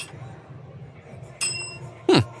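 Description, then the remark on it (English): A service bell bought at an Office Depot store dings with a bright, ringing tone that lingers briefly, followed moments later by a second, louder strike, over a faint low background murmur. “I went to one of their stores, and they have service bells there.”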